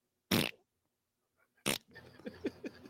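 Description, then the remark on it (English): Two short, loud, blubbery raspberry bursts, a man's mouth-made imitation of farting voiced for a puppet, separated by a pause; the second is followed by a string of softer, wet sputtering noises. “Well, the guy making the fart noises is using his mouth.”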